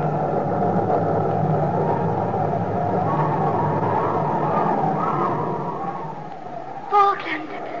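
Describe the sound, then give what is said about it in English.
A long, heavy rumble of thunder rolls steadily for several seconds, then fades away, with a brief voice sounding near the end. “Go back through the thunder.”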